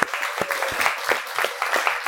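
A crowd applauds in a steady, dense wash of clapping, many overlapping hand claps forming a bright, fairly loud, crackling roar that holds level throughout.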